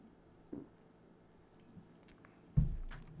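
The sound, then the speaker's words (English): A quiet sip of Diet Coke: a soft wet slurp, then a louder liquid gulp near the end, with faint squishy mouth sounds and no talking. “Let me take a sip of Diet Coke.”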